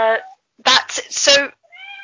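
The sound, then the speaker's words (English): A cat meows several times in quick succession, fairly loud, with short tonal cries and a brief gap before a final softer meow. “One of the cats.”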